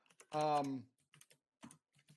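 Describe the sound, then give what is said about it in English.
Irregular clicks of typing on a computer keyboard, a few scattered taps with gaps between them, after a brief, loud, tonal vocal sound near the start. “Sorry to interrupt you're writing your memoirs.”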